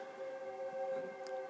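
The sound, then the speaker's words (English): A passing train's horn blares a steady, sustained chord of several droning tones, holding level throughout with no voices over it. “Can you hear the train?”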